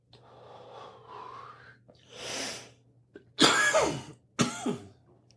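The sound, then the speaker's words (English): A soft gurgling inhale through a bong and a long breathy exhale, followed by two loud, harsh coughs, with no talking; a person coughing after the first bong hit of the morning. “I always cough a lot in the mornings.”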